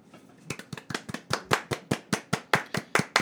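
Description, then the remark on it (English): A small group claps together as a thank-you, in a steady, tightening rhythm, the sharp claps starting a little ragged and growing louder and more synchronized until they land as single crisp beats. “We did that in unison where it didn't even sound like, it just sounded like clap, clap, clap, clap your hands.”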